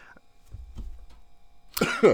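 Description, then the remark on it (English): A short, quiet low rumble gives way to a loud, harsh cough in two quick bursts at the end. No one speaks. “Sorry, I had to cough.”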